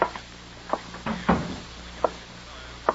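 A door is pushed shut with a dull thud, surrounded by a few short, sharp clicks and taps.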